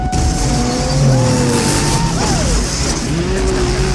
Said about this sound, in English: Okay, so all of the jet skis in this movie, it's important to know that they all sound like V-twin motorcycles. They do.